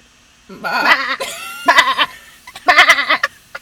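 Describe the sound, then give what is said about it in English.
A person's voice imitates a sheep, letting out three quavering, nasal bleats in a row, the first long and wavering, the next two shorter and loud. “You can't put somebody on the spot and be like, whip out a sheep noise.”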